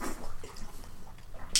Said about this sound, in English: All right, sipping.